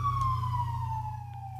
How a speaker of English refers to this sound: And, a siren.